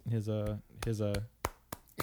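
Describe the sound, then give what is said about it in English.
One person claps a few times to congratulate a man who received the Distinguished Service Medal on his retirement, after a couple of short voiced sounds like a drawn-out hum or word. The claps are crisp and fairly loud, sharp and irregularly spaced, with brief pauses between them. “That's why I was clapping.”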